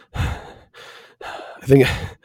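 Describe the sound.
A voice imitates the heavy, strained breathing of a man struggling to hold down a drink of straight ethanol: four labored breaths in quick succession, each a ragged sigh-like exhale, the last one loudest with a slight vocal strain.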